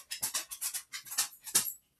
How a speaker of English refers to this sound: Sorry, guys. This is the downside about filming up downstairs. Dogs bark at everything.